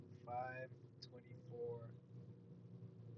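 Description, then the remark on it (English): A steady low rumble of a car rolling along in peak freeway traffic on I-5 South just past South Center around 4 p.m., heard from inside, with brief bursts of a voice over the constant drone. “Also, right now, I'm in peak traffic on the freeway on I-5 South.”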